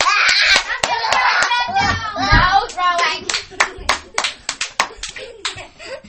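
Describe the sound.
Audience applause: children chatter and call out at first, then a scattering of hand claps takes over, sharp and uneven, from a small group rather than a full crowd.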